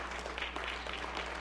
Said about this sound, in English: Come on, clap your hand. Get the Lord a great big hand. Praise the Lord.